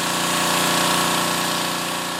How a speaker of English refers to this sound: And then, to add insult to injury, they pull out the power washer. As much as I like clean sidewalks, I hate these ear-splitting machines.